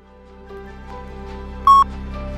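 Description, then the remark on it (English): A single loud, clear electronic beep of an answering machine, a pure steady tone lasting about a fraction of a second, sounding over a low background hum with no talking. “Comments after the beep.”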